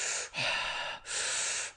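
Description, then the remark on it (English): Two long, loud breaths drawn in by a person demonstrating circular breathing, each a rushing airy hiss separated by a brief pause, forming a continuous in-and-out breathing rhythm with no talking. “And then it was just into this like round of like just this circular breathing, just like that.”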